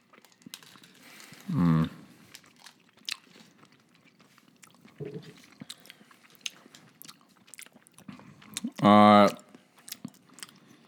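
Chewing half of a Rolo chocolate caramel candy: soft, sticky mouth clicks and smacks run throughout, broken by two short, loud hummed vocal sounds with no words spoken.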